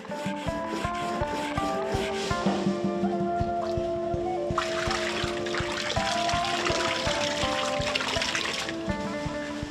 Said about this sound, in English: The paper's gleaming luster comes from hours of polishing.